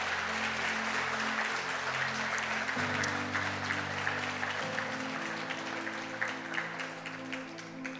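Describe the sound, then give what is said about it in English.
A church audience claps steadily as business owners come forward to be prayed for, the applause dense and sustained throughout, with sustained organ or keyboard chords shifting underneath. “Yeah, you can clap. That's fine.”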